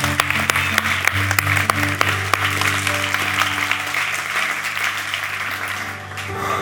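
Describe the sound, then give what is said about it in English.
A church audience claps their hands in praise of the Lord in a dense, steady wash of applause that lasts throughout, over sustained low organ-like tones, easing slightly near the end. “Come on, clap your hands.”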